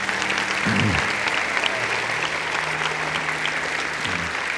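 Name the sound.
audience applause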